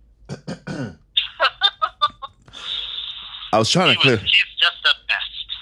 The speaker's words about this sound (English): I was trying to clear my throat and it wasn't happening.